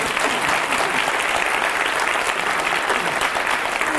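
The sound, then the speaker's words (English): A crowd claps steadily throughout for the panelists after a speed round of questions, a dense, even wash of many hands with no pauses or talking, holding a constant loud level for the full few seconds. “All right, give them a round of applause for the speed round.”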